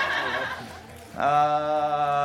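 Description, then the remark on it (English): A horse whinny sound effect played for the My Pretty Pony option: a breathy, snorting lead-in gives way to a loud, shrill neigh with a strong tonal quality that holds for about a second. “My Pretty Pony.”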